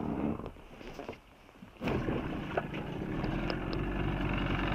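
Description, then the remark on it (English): A boat engine sputters to life after a brief lull, then settles into a steady, loud, droning rumble that runs continuously to the end, with no voices over it. The engine is being started on a boat to pick up divers after a dive. “We're going to pick them up now and get the engine started.”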